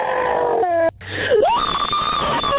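A loud, strained human scream recorded on the Just Scream phone line breaks off briefly, then dips and swoops upward into a long, sustained high-pitched wail, with no talking.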